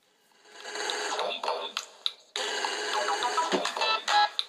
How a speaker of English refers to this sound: Why are you ringing me, …? Because that ringtone. Let me play for a bit. Why? What's wrong with that? What the hell is that, man? Dad, how is that your ringtone?